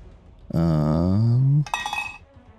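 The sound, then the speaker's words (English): A loud, sustained ringing tone holds for about a second, then breaks into a quick metallic clatter of dice tumbling and rattling before settling into quiet. The dice are rolled to hit for a spell strike and land on 16. “Okay, we're rolling to hit first?”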